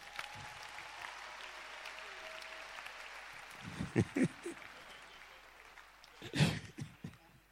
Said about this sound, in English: Okay. Clap for Jesus.